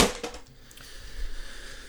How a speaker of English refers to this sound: Didn't want to roll a 1, but... That's the way the chips fall. I'm going to throw out these dice.